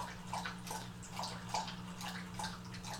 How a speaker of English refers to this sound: And the water dish is running out of water, so you can hear the motor go.